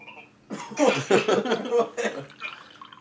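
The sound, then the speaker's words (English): A ready-to-drink margarita is poured into a glass, a steady gurgling splash that starts abruptly, runs for about two seconds and trails off softer at the end. “All right, I'll pour some.”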